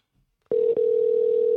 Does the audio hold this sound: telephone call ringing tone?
yes